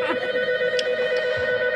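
telephone ringing

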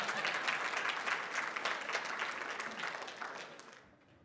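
audience clapping

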